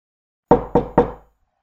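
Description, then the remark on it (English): Three firm knocks on the wooden door of a judge's chamber in a courthouse, evenly spaced, each with a short resonant decay, followed by silence. “After getting to the courthouse, I got to the door of the judge's chamber and knocked.”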